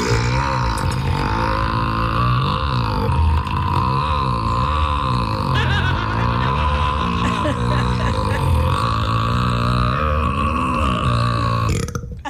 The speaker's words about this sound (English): Buddy's long burp in the movie. Love it. Exactly 12 seconds long.